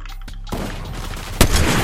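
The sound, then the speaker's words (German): A video game sniper rifle fires a single sharp, loud crack, a headshot, that bursts out of a rumbling, noisy background of game sounds, with a brief ringing tail after the shot. “Headshot snipe.”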